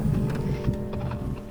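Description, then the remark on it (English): Horses pulling a carriage clip-clop over a low rumble, the sparse clops slowing and thinning out as they come to a stop at the edge of some towers. No one speaks. “You get to the edge of the towers, they look to be empty, and the horses stop.”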